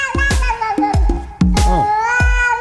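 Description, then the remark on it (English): A cat's yowl is remixed into a song: drawn-out, wailing cries over a steady beat of punchy, booming drum hits, loud throughout. “Listen, that annoying cat yowl.”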